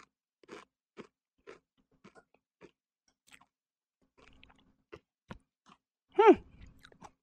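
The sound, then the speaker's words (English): Chewing of a crunchy ranch chip made with Carolina Reaper peppers, soft rhythmic crunches about twice a second, fairly quiet, ending with a brief louder hum-like vocal sound. “So far, no heat. That ranch in there really helps keep it cool.”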